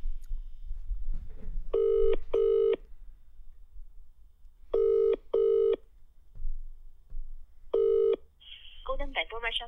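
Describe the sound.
A telephone line rings out in steady double-pulsed electronic tones as a prank call is placed to a restaurant, three rings with pauses between, after faint murmuring voices at the start; a short warbling burst follows as the call connects.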